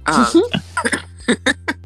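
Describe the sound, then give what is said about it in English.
A fairly loud cough opens, followed by a quick series of short, sharp coughs and throat-clearing bursts in an uneven rhythm, with no talking. “Excuse me, wouldn't be dyslexic without a cough.”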